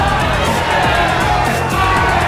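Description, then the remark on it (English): A dense, restless and hungry crowd demanding food from the king shouts and clamors continuously, many voices overlapping into a loud, agitated roar with scattered yells rising above the din. “But the crowd was restless and hungry.”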